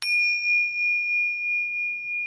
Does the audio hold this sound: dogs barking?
no